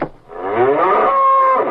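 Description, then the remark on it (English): A single drawn-out cow moo, rising in pitch and then holding a steady, harmonic-rich tone for over a second before cutting off. It is loud and clear, with no talking. “Now, I'm going to search this saloon for them cattle.”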